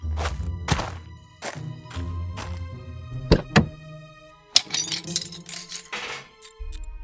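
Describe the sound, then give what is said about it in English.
A hollow metallic clatter rings out as a metal hubcap, dropped by a small dog named Slurb, bounces against a bathtub, with a few sharp clanks and thuds over a low hum, loud. “That's a perfect hubcap, and you are a perfect little dog. Aw, and you dropped it right in the bathtub.”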